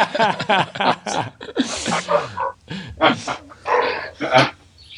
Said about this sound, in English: There's the dog. That's my Irish terrier getting excited about something.